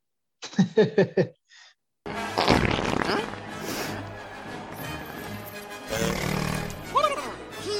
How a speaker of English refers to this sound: But before we get to the pod race, there's fart joke. Fart joke, so bodily function joke number 3.